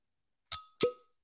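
A metal-topped cork pops from a wine bottle being opened: two quick, sharp pops a fraction of a second apart, each leaving a brief glassy ring. The second is fuller and lower, with no voices.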